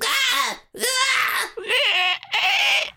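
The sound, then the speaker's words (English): A voice imitates a baby creature shrieking: four loud, high-pitched wailing cries in quick succession, each wavering and bending in pitch, with short gaps between them. “It shrieks at you.”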